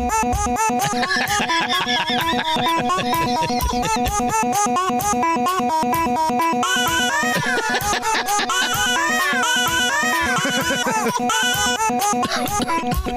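A loud, driving rock track built from pitched, chopped-up baby coos and squeals, stacked into a fast, relentless rhythm with no pauses, playing continuously from start to finish.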